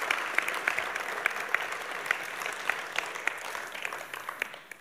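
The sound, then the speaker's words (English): A crowd claps steadily for several seconds for students who have stood up, a dense patter of many hands with sharp individual claps standing out, holding a fairly even loudness before easing off at the end. “Yeah, give them a round of applause, celebrate them, absolutely.”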